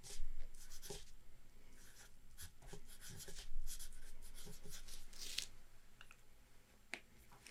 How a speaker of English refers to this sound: Let's put a little note here. Well, let's put it down here.